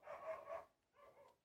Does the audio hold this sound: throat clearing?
no